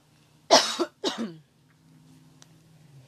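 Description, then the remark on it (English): Two forceful coughs in quick succession, the first slightly stronger, followed by quiet low background hum with a faint click. “Sorry about that. Didn't want to cough in your ear.”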